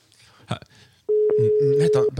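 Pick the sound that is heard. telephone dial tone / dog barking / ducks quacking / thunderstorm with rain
telephone dial tone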